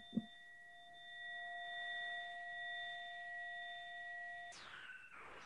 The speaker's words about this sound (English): I have no bell. Ding. Tanya has a bell.